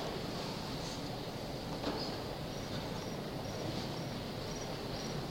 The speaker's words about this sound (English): There really is a cricket I'm hearing. Is that you? That's good.